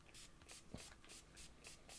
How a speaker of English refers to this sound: So, I mean, this is quick drying alcohol, so I'm guessing I'm going to need to spray it again.